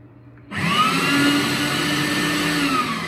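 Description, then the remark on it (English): A traditional food processor motor, not the QuietMark certified Magimix one, played back from a video recorded two years ago, switches on as its button is pressed after a brief pause and runs loudly and steadily, a harsh high-pitched whine over a broad roar with no talking. “back 2 years ago, pressing the traditional motor first.”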